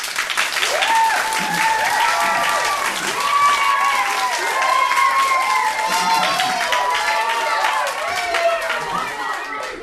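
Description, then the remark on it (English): An enthusiastic audience applauds steadily for several seconds for storyteller Willy Claflin after his tale Little Freddy and His Whistle, dense clapping mixed with cheers and excited voices, loud throughout. “An enthusiastic audience for Willy Claflin and Little Freddy and His Whistle.”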